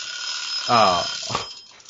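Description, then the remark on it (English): A timer rings with a steady, shrill metallic jangle that runs through the whole moment, while a voice briefly speaks over it partway through. “Anyway, we don't need to, like, keep going on this until the timer starts ringing, you know?”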